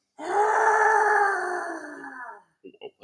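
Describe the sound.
A loud, drawn-out groaning wail, a human voice imitating the cry of a distressed owlbear, holds steady for about two seconds and sags in pitch before trailing off into a few short vocal fragments.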